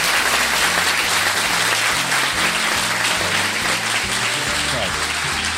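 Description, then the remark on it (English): A round of applause for Robert Bathurst from a crowd, dense and steady clapping that stays loud for several seconds, with a low, stepping musical line playing underneath. “Can we give a round of applause to Robert Bathurst?”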